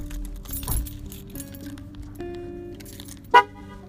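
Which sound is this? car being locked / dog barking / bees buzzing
car being locked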